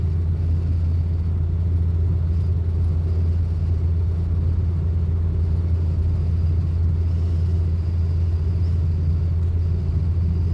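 Steady low road rumble from inside a moving car on a road trip to Rushmore, a constant deep drone with a broad hiss of tire noise above it, unchanging and with no voices throughout.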